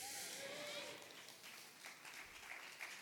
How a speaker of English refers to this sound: That's a golf clap.